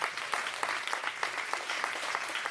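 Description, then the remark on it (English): Steady audience applause for a panel at the end of its discussion. A dense wash of many hands clapping, with a few sharper claps popping out irregularly, holds at an even, moderate loudness throughout with no voices. “Let's give a huge round of applause to this incredible panel.”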